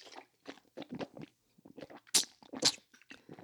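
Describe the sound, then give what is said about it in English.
A person imitates loud, wet kissing with their mouth: a series of smacking, slurpy lip sounds in an irregular rhythm, with two sharper, louder smacks near the end. No words are spoken. “Let me explain to y'all what loud kissing is.”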